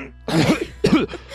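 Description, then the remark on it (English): A voice imitating a badly wounded character coughing up a little blood, giving two rough, wet coughs in quick succession, fairly loud, with a strained, throaty quality and no other talk. “And coughing up a little blood or something.”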